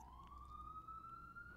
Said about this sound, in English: This is a city. Sirens. This is a city, and there are lots of emergencies all the time.